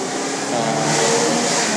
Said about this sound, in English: That car's just being loud because it's loud. Yeah, I don't know. That's like an Isuzu. I haven't seen an Isuzu in fucking years, bro.